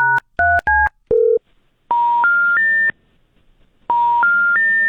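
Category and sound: signal or alarm, telephone keypad dialing tones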